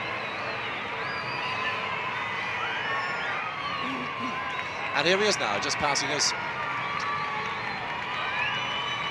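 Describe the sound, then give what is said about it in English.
A large outdoor street crowd, gathered mainly around the Church of Our Lady of Lourdes, cheers steadily as Pope John Paul's motorcade with outriders arrives, swelling midway into a louder burst of shouts and whoops, while a man talks calmly over the noise. “Pope John Paul getting an enthusiastic welcome from the crowd, who have mainly concentrated around the Church of Our Lady of Lourdes, which holds the shrine of the Venerable Matt Talbot.”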